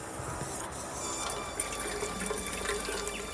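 Water pours steadily into an unglazed clay pot sunk in the ground of the Aurora's rooftop garden to water the plants, a continuous splashing and gurgling that holds at an even level for a few seconds with no voices.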